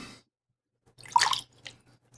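A short burst of splashing, swishing water around 1 to 1.5 seconds as a wine glass is rinsed out, with a few fainter drips and trickles trailing after, over a low steady hum.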